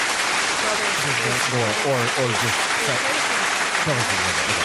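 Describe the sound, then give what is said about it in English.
Applause sound effect played from an applause button: a crowd bursts into sustained applause, dense and steady throughout, with a few voices cheering over the clapping. “I think I have an applause button.”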